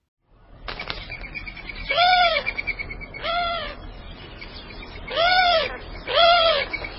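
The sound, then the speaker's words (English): A Eurasian collared dove gives four harsh, nasal mewing calls, each a short downward-arching note, loosely spaced in two pairs. A steady rushing, whirring noise runs underneath, like wingbeats in flight. “The Eurasian collared dove also has a distinctive call, often given on the wing, but not always. It's a harsh nasal mewing.”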